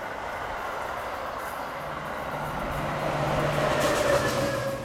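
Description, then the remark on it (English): A Metro train rolls past on the tracks close by in June 2023, a steady, loud rumble of wheels on rails that swells slightly, with a thin metallic whine rising near the end. No one speaks. “We're by the Metro tracks today, so yeah, there we go.”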